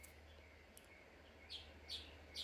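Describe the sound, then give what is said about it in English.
Birds chirp outdoors in good weather in short, bright bursts, three clusters of quick tweets over a steady low hum, fairly faint. “These birds are wilding, y'all.”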